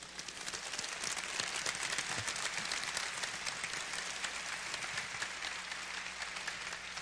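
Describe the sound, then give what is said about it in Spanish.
A crowd claps steadily for several seconds in applause for God the creator, a dense, even wash of many hands applauding with no voices breaking through. “Así que, ¿por qué no le damos un aplauso al Dios creador?”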